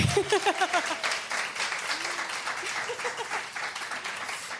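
A crowd applauds with dense, steady clapping that keeps going throughout, joined at the start by a few raised voices or whoops, as a speaker is introduced at an evening talk.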